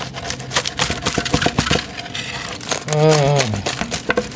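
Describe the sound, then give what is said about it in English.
Crisp, crackly crunching and scraping of a vegetarian pizza being cut, in a quick run of rough strokes, then a short hummed voice with a wavering pitch. “We're cutting our vegetarian pizza.”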